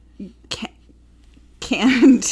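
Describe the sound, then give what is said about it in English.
A short, sharp sneeze bursts out after a quick breathy intake, followed by a louder, noisy stretch of voices reacting. “Ew! Bless you.”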